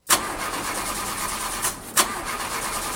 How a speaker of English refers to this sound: Car not starting? Yeah, it just started doing this, and I don't know who to trust to take care of it.